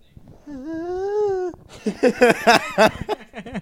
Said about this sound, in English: That was just me. That was very feminine. That was me yawning.